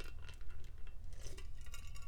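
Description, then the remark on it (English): Someone drinks from a metal cup: light, scattered metallic clinks and taps over a low steady hum, with no talking. “You have plastic cups, and yet you chose a metal one.”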